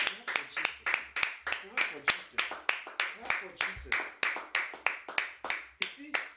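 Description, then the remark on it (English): An audience claps for Jesus together in a steady, even rhythm, about three sharp claps per second, sustained and fairly loud throughout. “Clap for Jesus.”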